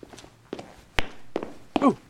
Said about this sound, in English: Wait, I fancy I heard someone on the stairs. Someone on tiptoe.